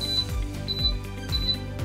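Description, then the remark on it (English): An electric fireplace's high-pitched electronic beep sounds in short double chirps, repeating three times at a steady rhythm, each paired with a low thumping clunk. No one speaks. “We're also gonna see if we can get rid of this obnoxious beep.”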